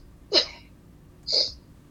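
Two short, abrupt burps about a second apart, each a quick gulping burst of moderate loudness with silence around them and no talking.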